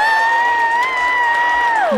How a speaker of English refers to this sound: The crowd goes insane!